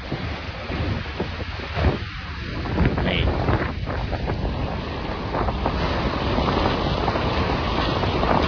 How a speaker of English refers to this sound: But Crimea got hit with a storm.